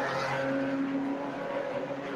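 A Porsche 911 race car's engine roars loud with a steady, high-pitched whine as it passes an Audi on the race track, holding nearly constant for two seconds and easing slightly toward the end, with no voices.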